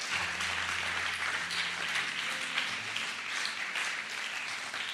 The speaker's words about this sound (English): Can we give those wonderful people a big hand clap?